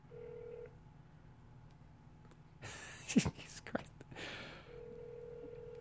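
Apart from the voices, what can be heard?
telephone dialing tones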